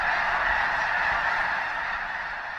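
A dense, continuous roar of 10,000 or more white snow geese honking at once, a loud wall of overlapping calls as the huge flock takes flight from a field when a bald eagle flies over, with no gaps or pauses.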